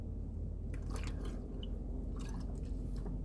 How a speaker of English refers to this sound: sorry for the noises, the slushing, that's me drinking water. It's hot down here in Texas.